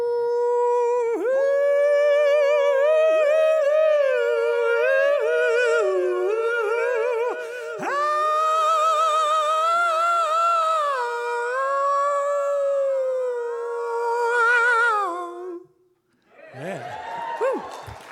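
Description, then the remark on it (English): A single singer delivers a loud, sustained gospel-style howl, the voice sliding and wavering with vibrato for about fifteen seconds before breaking off into a brief breathy tail. “So here's a gospel howl, right?”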